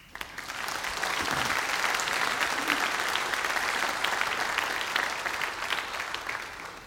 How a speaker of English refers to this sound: Welcoming new people is hard for teens. You ought to applaud that.